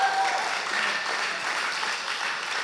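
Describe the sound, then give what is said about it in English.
A church crowd applauds the news that 110 people now serve at the church, a steady, dense wash of many hands clapping at once with a few brief whistle-like tones near the start, holding an even level throughout. “As of today, you can cheer in a second.”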